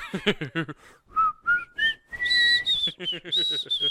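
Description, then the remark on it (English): Someone whistles a short, bouncy tune, the pitch sliding upward through a few sustained notes, with a few quick voiced syllables at the start and end. “Were the Northerners whistling the Harlem Globetrotters themes the whole time?”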